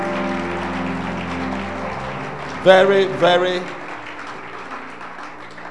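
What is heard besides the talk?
audience clapping hands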